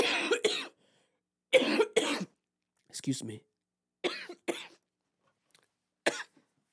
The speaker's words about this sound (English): Might post a GoFundMe myself for my fucking cough.